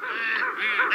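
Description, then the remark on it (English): Several geese flying north in springtime honk loudly and continuously, their nasal calls overlapping in a brief, busy burst with no voices present. “It's springtime, so the geese must be flying back north.”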